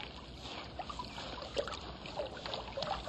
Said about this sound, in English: I found a brook. Oh, let's see. Oh, it's so big.